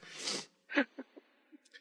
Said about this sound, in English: I didn't mean a sniffle there. It sounds like I'm doing some yayo.